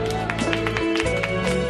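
Audience applause: a steady patter of claps at an even, fairly loud level, with a sustained tonal hum running underneath for the whole short stretch.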